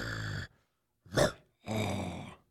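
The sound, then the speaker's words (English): A person makes three short, wet, gurgly growling sounds from the throat using built-up mucus, with brief pauses between them, imitating a rough animal growl. “Mucus growl.”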